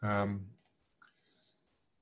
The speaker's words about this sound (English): And oops, back. We've escaped ahead. Maybe me clicking the mouse too many times. If I take control, maybe that advances the PowerPoint that we have.